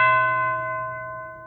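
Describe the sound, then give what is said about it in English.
A single deep church bell strike rings out and lingers, tolled during a pause of silence to remember loved ones who have died; its rich overtones slowly decay over a low hum, with no voices present. “As we pause in silence while the bell tolls, we remember our loved ones who have died in faith.”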